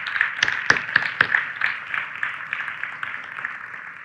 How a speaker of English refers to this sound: Now you can clap.